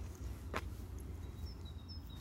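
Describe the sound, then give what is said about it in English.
Faint birdsong in Primrose Hill park: a few thin, high whistled notes drift over low outdoor rumble, with one brief soft knock early on and no one talking. “Hear the birds?”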